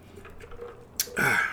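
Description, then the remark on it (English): After a quiet moment, a small click is followed by a brief, loud slurping sip of Monkey Shoulder whisky and Coca-Cola, with no talking. “Gotta sip this yak.”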